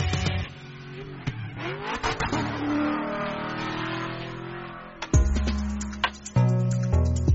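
A German-made car engine revs and accelerates, pitch sweeping upward and falling, then a couple of sharp, loud revving bursts near the end, with no voices.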